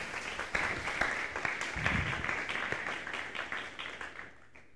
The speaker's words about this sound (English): You can give him a round of applause there. Yeah.